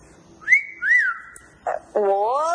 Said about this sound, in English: Can you whistle right now?